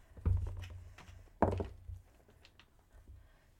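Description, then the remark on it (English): Vex dice are rolled onto a tabletop for an investigation check, coming up 19: two dull, heavy thuds about a second apart, each trailing off into a few faint clicks and rattles before quiet returns. No one speaks. “I rolled another 19.”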